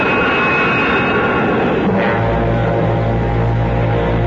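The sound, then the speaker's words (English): A train pulls into a station with a loud, steady mechanical roar; about halfway through, a deep droning hum swells in and holds. No one speaks. “As the crowd moved forward in anticipation of boarding the train”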